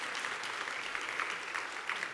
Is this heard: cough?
no